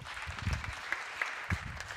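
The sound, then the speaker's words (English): A crowd at a church service claps in a steady round of applause for volunteers, a dense patter of many hands with a few sharper claps standing out, sustained and moderately loud throughout. “Can you give my volunteers a round of applause, please?”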